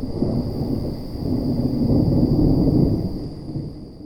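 A deep, rolling rumble of thunder swells and churns for several seconds, loud and heavy in the low end, then gradually fades away with no voices present.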